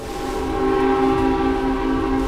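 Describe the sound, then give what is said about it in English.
The steam whistle of the ship Hesperus, blown by Captain James Harvey as the ship came within sight of a lighthouse to alert the lighthouse keepers, gives one long, steady blast, loud, its rich droning tone holding without a break, with no voices around it. “And so now, as the Hesperus came within sight of the lighthouse, Captain James Harvey blew on the steam whistle, as was customary, to alert the lighthouse keepers to the ship's presence.”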